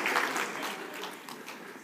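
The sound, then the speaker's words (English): A crowd applauds steadily, a dense crackle of many hands clapping that holds a fairly even loudness throughout the short stretch, with no voices standing out above it. “You can applaud anytime.”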